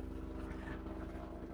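A National Guard helicopter landing in a backyard drones steadily overhead, its engine hum layered with a fast, regular low thumping from the rotor blades, continuous and unbroken with no voices.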